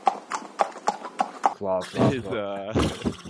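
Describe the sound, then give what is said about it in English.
A voice imitates a horse: about six steady tongue clicks mimic trotting hooves, then a drawn-out, wavering vocal whinny follows, fairly loud. “Oh, horse.”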